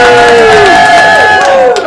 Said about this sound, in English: Listen to that raucous applause. That was a lot of sound. Yeah. That was a lot of sound.